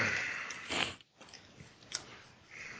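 Breathy sniffs into a microphone, a couple of short noisy inhalations with a brief pause between them, fairly loud and with no talking.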